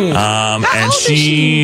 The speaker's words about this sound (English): My first Pilots and Paws trip in a very long time is happening after work today, and it is Ella, a blind and deaf little rescue dog. Check it out. There's Ella. There's Ella right there. She's blind and deaf.